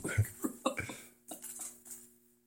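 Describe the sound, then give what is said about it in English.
A woman coughs in a few short, quick bursts, followed by softer breathy rustling as the sound fades out. “She's it's okay for her cough. It's healthy. It's normal.”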